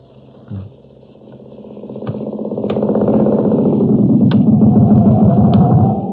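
A motorcycle engine rumbles and builds steadily in volume, its throaty drone rising and holding strong, with a few sharp clicks scattered through it.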